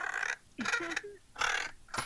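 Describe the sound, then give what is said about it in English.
Four harsh, raspy crow caws ring out in a steady series, each short and loud, with brief quiet gaps between them and no talking. “I'm sorry, I was receiving a message from the crow ghost.”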